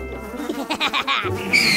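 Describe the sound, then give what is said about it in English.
A horse whinnies once, fairly loud, in a quavering, pulsing call that ends on a high, squealing note. No one speaks. “Horses!”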